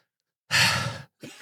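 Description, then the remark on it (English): A person demonstrates heavy deep breathing on request: one long, loud, deep exhale, a brief pause, then the start of another breath, with no talking. “I think it's like a breathe heavier. Okay. Give us some deep breathing.”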